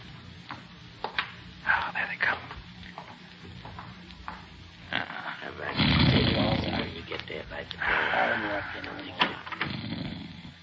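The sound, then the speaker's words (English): A man snores loudly in several long, rasping breaths, each swelling and fading in a slow rhythm, with softer rustling sounds before the snoring begins. “He's asleep, all right. I can hear him snoring.”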